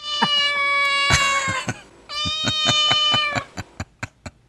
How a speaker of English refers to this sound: That's goddess meowing. Uh-oh, she's getting pissed.